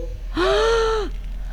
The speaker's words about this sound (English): The principal gasped. So the principal saw it too. He saw something.